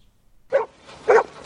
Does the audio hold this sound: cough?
no